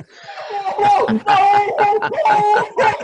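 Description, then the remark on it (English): Three dogs, a Catahoula named Happy, a German Shepherd K9 named Coco and a little yellow Lab named Sadie, howl together at a buck seen in a hayfield in a loud, overlapping chorus, their wavering, drawn-out cries rising and falling almost without pause for about three seconds. “It was just a cacophony for dog howl.”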